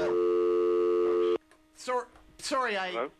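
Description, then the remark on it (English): A loud, steady electronic telephone busy tone sounds for about a second after a radio host disconnects a call-in caller, and cuts off abruptly, followed by a voice speaking briefly. “I disconnected the caller.”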